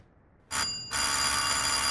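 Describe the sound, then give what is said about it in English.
A doorbell at the Bumsteads' front door, rung twice by a visitor: a short bright metallic burst, a brief pause, then a longer sustained ring that continues loudly to the end. No one speaks. “I'm sorry to have rung twice, Mrs.”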